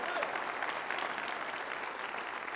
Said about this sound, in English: If you believe that, can you clap your hands and praise him?